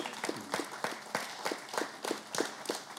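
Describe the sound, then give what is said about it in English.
Steady, rhythmic clapping for a pastor's remarks, with about ten sharp claps over a few seconds, evenly spaced like an audience applauding in time. Moderately loud, with no voices. “You're getting a lot of claps, man.”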